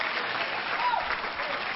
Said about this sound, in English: Give the Lord some hand clap, somebody. Yes.